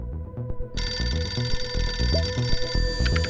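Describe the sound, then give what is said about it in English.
A telephone rings sharply, starting a moment in: bright, high, continuous bell tones over a steady bed of low music, loud, with no one speaking. “And what you need to know is that for this week's spy, it all started with a phone call.”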